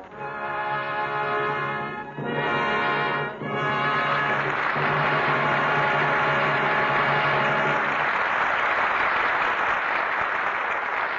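Loud, steady audience applause after a radio drama broadcast, lasting about eleven seconds, with a sustained, brassy musical chord held over the clapping for most of it before the applause carries on alone, calling Edward G. Robinson, Marlene Dietrich and George Raft back to the microphone for a curtain call.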